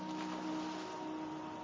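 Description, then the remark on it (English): A boat churns steadily through water, a low engine hum under a continuous rushing wash, even in level throughout the brief stretch, with no voices. “They left Babel by foot, by cart, and by boat.”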